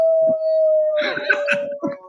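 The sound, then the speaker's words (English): A steady, sustained siren tone runs throughout while Kaiser, a German Shepherd, joins in with a few wavering howls and moans at the siren in the second half. “German Shepherd is howling at a siren and downing.”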